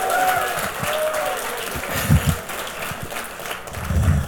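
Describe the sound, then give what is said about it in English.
A crowd claps steadily for several seconds, giving a hand clap of praise to the Lord: a dense, loud wash of hand claps with a few stronger bursts, and faint whoops or tones rising over it. “Oh, somebody give the Lord a hand clap of praise.”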